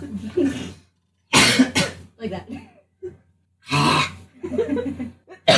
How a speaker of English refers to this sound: Everyone's coughing.